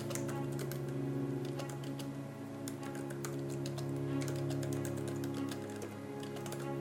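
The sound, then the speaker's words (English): Rapid, irregular clicking of keys on a computer keyboard, fairly clear, over a steady low hum for several seconds with no one talking. “Let me try actually typing.”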